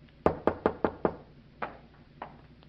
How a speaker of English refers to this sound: I went upstairs, opened a bottle, and waited for your knock on my door, Commodore.